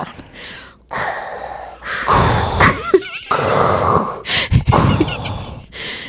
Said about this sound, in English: why are you breathing so heavily?